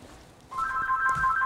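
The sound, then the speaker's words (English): A telephone rings with a call from telemarketers, a rapid, warbling electronic two-tone trill that starts abruptly partway through and continues steadily at a moderate volume. No one speaks over it. “Do you have the phone over there, Mom?”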